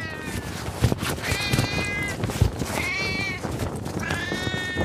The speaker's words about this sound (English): He pointed to the inflatable cat. Ugh, seriously? So the inflatable cat apparently can meow too? Ugh, that spooked me. Since when did inflatables also make noises?